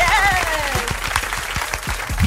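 A burst of applause in a studio for an arriving guest, with dense, rapid clapping, plus a quick whooping cheer at the start and a faint voice underneath.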